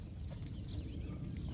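A horse's hooves clip-clop in a steady rhythm at a horse farm in New Jersey, over a constant low outdoor rumble, with no one speaking.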